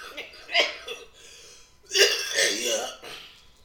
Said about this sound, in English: Excuse all the coughing and everything like that.